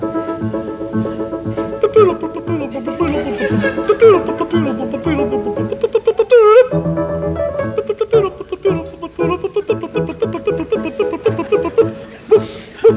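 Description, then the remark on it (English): The first part of an opera's overture, played loudly by the orchestra in the pit of an opera house, full and continuous, with layered sustained melodies, a low bass line and wavering held notes before brisker, choppier passages near the end. “And this is the overture.”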